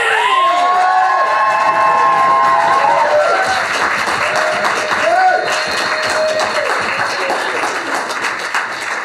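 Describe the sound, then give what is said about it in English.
A loud audience bursts into sustained, warm applause welcoming an academic performer to the stage, with cheers and whoops rising over the dense clapping, continuing steadily for several seconds. “She'll tell you what the act is going to really be about, but I'd just like you to give her a really warm round of applause and welcome”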